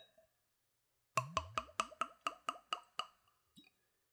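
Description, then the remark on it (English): Whiskey glugs out of a bottle with a plastic pour insert into a clean Glencairn whiskey nosing glass in a quick, even run of about nine hollow gurgling pulses, followed by a faint tap of plastic on glass as the pour ends. No one speaks. “So let's go for a pour.”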